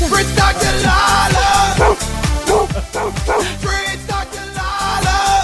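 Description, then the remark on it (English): A loud, upbeat music sting made for Delilah, a puppy a couple of months old, with a steady bouncing beat and dog barks and yips woven through it, playing alone without any talking. “I also love that you have audio for your dog, but no one's made any audio for my kids.”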